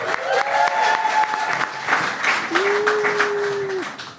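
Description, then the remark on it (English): An audience applauds a guest being introduced at an event, with dense, steady clapping throughout, moderately loud, while a couple of sustained whistle-like tones ring briefly over the clapping. “Please give Charlie a round of applause, everybody.”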